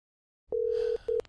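A telephone line tone sounds twice while calling Knight Transportation, a steady electronic beep held for about half a second and then a shorter one, clear with no voices.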